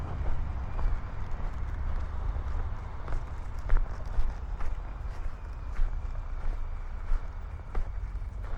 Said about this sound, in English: Okay, we just had to walk to the car down the slope.